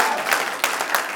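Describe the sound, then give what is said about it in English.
A crowd claps hands together, a dense, steady wash of applause with a few sharper claps standing out, fairly loud throughout. “clap hands for my brother.”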